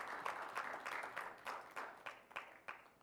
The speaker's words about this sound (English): Come on, clap your hands real loud to Jesus.